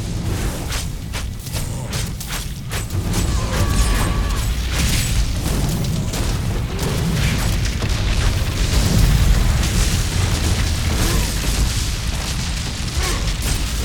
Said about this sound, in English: He's throwing all kinds of explosions and fire all over the place.